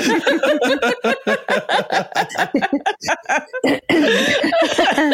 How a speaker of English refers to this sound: I've got a bit of a frog in my throat today. So if I start coughing, I do apologise.